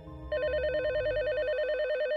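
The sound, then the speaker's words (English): A home telephone rings with a bright electronic warble, its tone rapidly alternating in a steady trill that starts abruptly and continues clearly and fairly loud, with no voices. “One day, as usual, the phone rang.”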